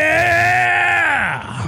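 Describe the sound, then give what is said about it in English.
A loud, sustained human scream lasting under two seconds, high-pitched and strained, holding steady before the pitch sags and breaks slightly at the end. No other voices or sounds. “Now you can't hear how loud you're screaming.”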